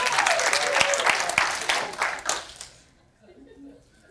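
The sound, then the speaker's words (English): A brief, thin smattering of pity applause from a few people, uneven claps for about two and a half seconds before fading out, followed by faint murmuring voices. “Okay, that's like a pity clap.”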